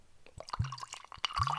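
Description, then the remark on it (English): Honey whiskey liqueur from the makers of Jack Daniel's Tennessee whiskey pours over ice into a glass in short gushes with wet glugging and dripping sounds, fairly clear, with a faint clink near the end and no talking. “So I'll let that get down to temperature. Although the ice has melted a little bit, so it should be quite quick.”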